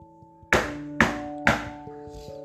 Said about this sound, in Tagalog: Nadama niya ang maririing katok na nagmumula sa loob ng kawayan.